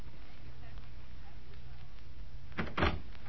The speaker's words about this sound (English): Is that the front door? Yes. Yes, it's the front door.